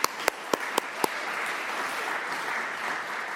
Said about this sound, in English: So let's give them a round of applause right now. Why not?